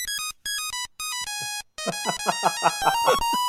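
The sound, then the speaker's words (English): An old mobile phone ringtone of the era when City last won at Anfield plays a bright, beeping monophonic melody of short electronic notes with brief gaps, then a busier, buzzing run of rapid tones, loud with no voices. “Last time they won there, your mobile phone might have sounded like this.”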